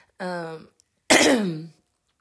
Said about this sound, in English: excuse me, I had to clear my throat.